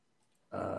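After a moment of near silence, a dog suddenly lets out a loud, rough growl that runs to the end of the short clip.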